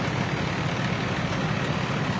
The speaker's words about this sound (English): Here comes a huge tow truck. Don't look now. Wow. This is the biggest tow truck I've ever seen.